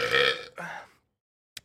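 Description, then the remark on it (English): A loud burp in two rough, drawn-out pulses lasting about a second, made in the middle of a talk about politics, followed by silence and then a brief faint click or rustle at the end. “That's how you know not to take us seriously, too, is the burps in the middle of us talking about politics.”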